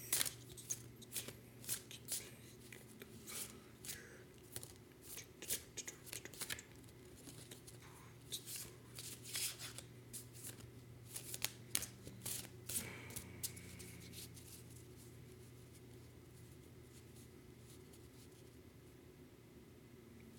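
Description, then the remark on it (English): Cards being shuffled in quick bursts of crisp riffling and flicking, with a steady low hum underneath that continues alone near the end. “I got lost in song and shuffling.”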